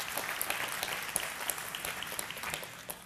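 An audience claps steadily, many hands producing a dense, crackly wash of applause with scattered sharper claps standing out, holding a fairly even level before easing off at the end.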